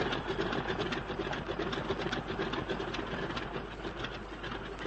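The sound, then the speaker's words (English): Cold aircraft engines sputter and rev in a continuous, rattling mechanical drone with a rapid chattering pulse, holding a fairly steady loudness throughout, with no voices. “And if only your engines don't seize, they're stone cold”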